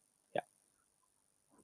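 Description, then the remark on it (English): A sudden short digital glitch bursts out as an internet connection hiccups during a call, then the line goes nearly dead with only faint hiss, before a faint sound returns at the end. “There's a little bit of internet hiccup here.”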